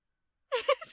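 Silence, then one abrupt sneeze bursts in halfway through, a sharp voiced burst with a hissing, breathy tail that trails off at moderate loudness.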